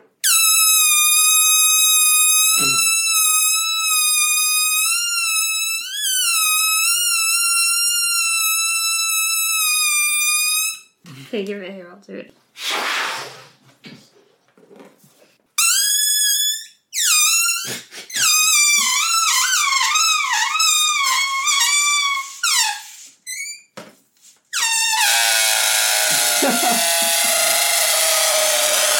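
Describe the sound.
A squealing device, held away from the microphone, mimics a dying pig: a long, shrill, sustained squeal, then choppy bursts and wavering, warbling squeals, ending in a harsh, raspy screech. A voice briefly speaks at one point.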